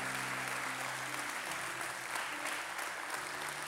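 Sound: audience clapping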